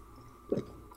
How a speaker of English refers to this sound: So I went to my local liquor store a week later, found some hard kombucha. And I'll tell you this, not bad. I'm going to crack one open now. Really? Gonna give a sip here.